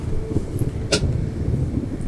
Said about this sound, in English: You go up to the doors, and the doors in front of you suddenly swing open, revealing a grand hall filled with the sound of organ music.